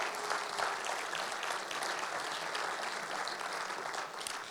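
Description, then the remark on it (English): A crowd applauds the speaker's wife steadily, a dense, even wash of many hands clapping that holds at a constant level for several seconds, with no voices standing out. “So can we give my wife a massive round of applause?”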